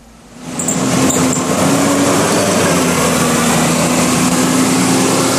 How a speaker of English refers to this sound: It's another bus going past the bus stops here on Midsummer Boulevard. As you look out from the main shopping building, I can see the point across from me and Midsummer Place to my right, and the bus is passed in both directions on this road